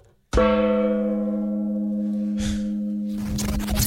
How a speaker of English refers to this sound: I had to... reach for the gong. We need to move the gong.